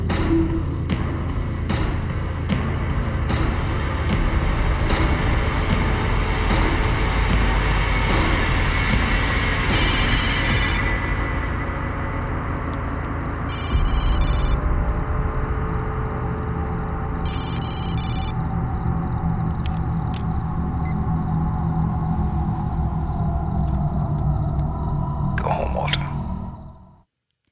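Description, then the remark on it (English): Dense, loud music plays, then a cell phone ringtone cuts in with shrill, high-pitched electronic bursts repeating in short rings over the fading music before everything stops abruptly. “We hear the music, and then all of a sudden the music is cut by a cell phone ringing.”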